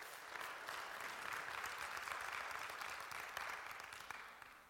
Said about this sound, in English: Give him a hand clap of praise for what he's done.